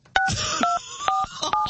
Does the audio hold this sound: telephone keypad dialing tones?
yes